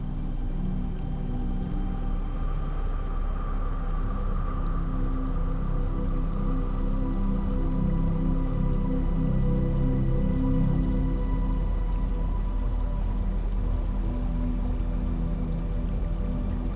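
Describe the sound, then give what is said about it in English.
Steady trickling water runs continuously throughout, a soft babble with light splashes and drips layered over a low, even rush, with no voices. “Soothing Running Water”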